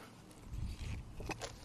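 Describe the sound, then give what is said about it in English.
A quiet sip of hot coffee with two creams and sugar: low handling rumble, then a couple of short, airy slurping bursts near the end. No one speaks. “Hang on, I'm going to take a sip.”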